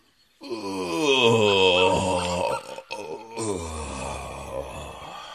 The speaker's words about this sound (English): He yawned and yawned.